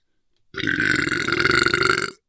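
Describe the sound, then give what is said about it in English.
A single long, loud burp after drinking a carbonated drink rumbles for about a second and a half, rough and sustained, then cuts off abruptly into silence. “You're gonna burp.”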